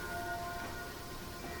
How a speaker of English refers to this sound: Well, they're actually recordings of bells, but enjoy them.